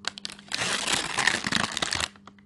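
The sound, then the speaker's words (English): Paper is crumpled in a dense, crackling burst lasting about a second and a half, preceded and followed by a few sharp crinkles. No one speaks. “You want to hear a joke about a piece of paper?”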